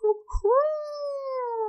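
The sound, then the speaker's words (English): A man's voice imitates a degenerate hound's howl: a short yelp, then a long, loud, sustained wavering howl that slowly falls in pitch. “Okay, and then the degenerate hound howls. There's little bits of garbage that actually fly out of its hefty jowls.”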